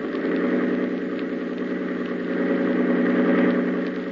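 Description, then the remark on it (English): A boat engine, opened up to full throttle, drones loudly and steadily at high power, a continuous throbbing roar with a strong low hum that holds constant throughout, with no voices. “hold tight to the wheel and open the engine up full.”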